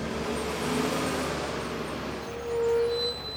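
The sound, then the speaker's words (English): A shuttle bus pulls in, its engine rumbling steadily over traffic noise, with a brief high brake squeal near the end as it comes to a stop and people board. “The bus comes and people board.”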